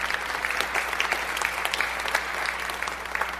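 An audience applauds a preacher before a sermon in a steady, continuous wash of many hands clapping, moderately loud and even throughout without pausing, with no voices standing out.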